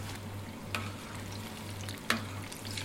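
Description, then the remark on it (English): Steady crackling sizzle of plantain frying in hot oil, a continuous bubbling hiss broken by two sharper pops or scrapes, with a low hum running underneath and no voices. “So that's all bubbling away.”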